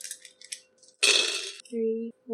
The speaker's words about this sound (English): All right, one more roll. Okay. So you get 13 dice. Right.